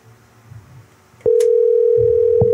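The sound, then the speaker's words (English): An outgoing call's line tone cuts in abruptly partway through, a loud, steady electronic tone that holds unbroken to the end after a stretch of quiet low rumble. “We're going to get somebody to pick up this damn motherfucking phone.”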